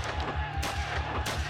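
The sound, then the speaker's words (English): Booming musket gunfire crackles in rapid, overlapping bursts, with two sharp louder blasts standing out over a steady low rumble, as French and Swiss defenders of the Bastille fire on citizens hacking at its wooden drawbridge. “The towers of the Bastille glowed with smoke and gunfire.”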